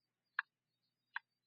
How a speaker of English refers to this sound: The clock kept ticking.